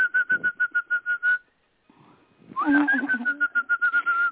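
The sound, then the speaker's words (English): A person whistles a rapid, repeated trilling note imitating a birdsong, pausing briefly before a rising swoop and another fast run of chirpy pulses, clear. “Sounds what just like bird a bird, is doesn't he?”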